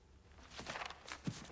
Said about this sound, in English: And then he stomped on the paperwork.